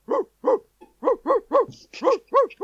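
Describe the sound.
A voice imitates a dog, letting out about nine short, evenly spaced barks in quick rhythm, loud, with no other talking.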